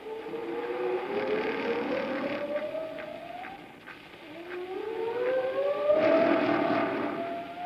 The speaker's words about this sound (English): An oscilloscope reveals the changes in frequencies, some inaudible to the human ear. At 1/16th normal speed, the intricacies of dolphin signals become apparent.